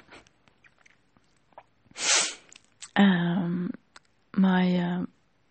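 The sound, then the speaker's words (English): One sharp sneeze bursts out after some faint breathing, followed by two drawn-out, strained vocal sounds from the same person. “And I was about to sneeze again.”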